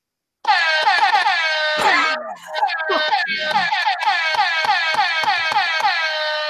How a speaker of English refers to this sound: Of all of the news that we did today, this is the item that gets the air horn? Really, seriously.